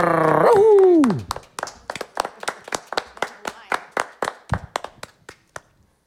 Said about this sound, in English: These fellas here are about to do a lot of clapping, a lot of spinning.